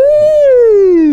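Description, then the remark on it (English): A roller coaster siren: one loud, sustained buzzy tone that rises slightly, then slides steadily downward in pitch for just over a second, with no talking. “Yeah, a roller coaster siren. Sound.”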